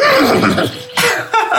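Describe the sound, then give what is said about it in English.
A person imitates a horse's whinny with a loud, shaky, wavering vocal neigh lasting over a second, ending in a couple of breathy bursts. “That's my horse sound.”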